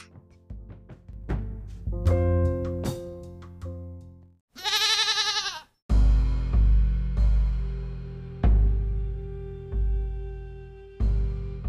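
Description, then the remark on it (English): A single loud, quavering goat bleat lasting about a second cuts in abruptly between stretches of sustained musical notes. “Oh, yeah, yes, interrupting Goat.”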